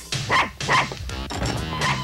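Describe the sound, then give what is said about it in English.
A dog barks twice in quick succession, loudly, followed by softer whining, yelping noises, as Rex walks into the hideout with it. No talking is heard. “Rex pulls into the hideout, walks in with the dog.”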